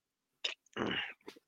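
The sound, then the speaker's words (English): A quiet sip from a drink: a short wet click, then a longer airy slurp, followed by a few small mouth and swallowing noises. No one speaks. “All right, let me take a sip of here.”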